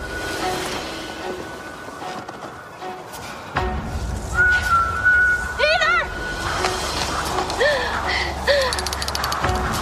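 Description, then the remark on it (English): Thin, eerie whistled notes slide and waver, a long held tone followed by a few short bending phrases, set against a hazy ambient background with low rumble and muffled activity, from a clip of Jane Campion's film The Power of the Dog. “Who knew a whistle could be so unsettling?”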